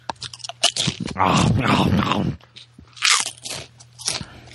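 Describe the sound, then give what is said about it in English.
Loud crunching of Fritos Scoops corn chips, with a dense burst of chewing in the middle and a few sharper crunches after, plus some low grunting or breathy noise between bites. “Are those Fritos?”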